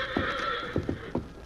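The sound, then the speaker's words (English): A horse that has just taken a fall whinnies in a long, high, wavering cry while a few heavy hoof thuds land irregularly beneath it, fairly loud, with no voices. “How about the horse?”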